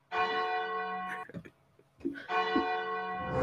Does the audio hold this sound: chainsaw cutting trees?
no